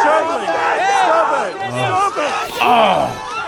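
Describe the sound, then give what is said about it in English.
A dense crowd of protesters in Ottawa, Canada, shouts and chatters as mounted police on horseback charge into it, with raised, agitated cries rising over continuous hubbub throughout. “in Canada, Ottawa's police mounted on horseback, diverted into the crowd.”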